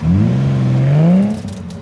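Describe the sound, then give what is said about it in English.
A Ferrari sports car engine revs loudly, its pitch climbing and sliding for over a second before cutting off into a quieter mechanical rattle. “Jordan Belfort's going to drive that Ferrari”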